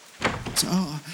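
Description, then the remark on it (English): A few quick knocks on the wooden door of a house, fairly loud, followed by a brief murmured voice. “You knock on the door and...”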